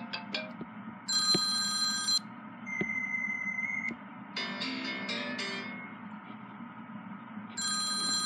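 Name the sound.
telephone ringing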